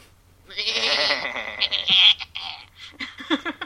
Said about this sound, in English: So these are our goats.